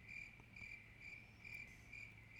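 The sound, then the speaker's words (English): Crickets chirp in a steady, high-pitched trill, pulsing in regular bursts about twice a second over a faint low hum, with no voices. “Describing what she has witnessed, she returns with the men to the quietly flowing creek, and it's literally crickets.”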